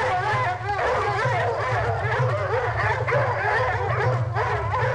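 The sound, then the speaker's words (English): Several dogs bark and yip at once in a dense, overlapping chorus that carries on without pause for the whole stretch, loud, over a steady low rumble. “Let the dogs go.”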